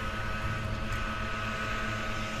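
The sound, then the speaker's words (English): A man's leaf blower drones steadily as he blows grass, a continuous whooshing engine roar with a faint buzzing hum underneath, holding the same loudness throughout with no voices. “There is a guy blowing grass, like he's out in the middle of a field with a leaf blower blowing grass.”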